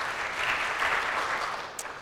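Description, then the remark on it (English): A crowd applauds with dense, steady clapping that holds at an even level for about two seconds, many hands overlapping into a continuous patter with no voices heard, welcoming summer worship staff being introduced at a worship service. “Clap, yeah.”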